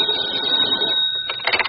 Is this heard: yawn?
no